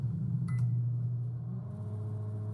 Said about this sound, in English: In another test of Canada's new plastic money, I'm going to see what happens when I put it in the microwave. It's a crisp new $20 bill. We'll put it in there for a minute.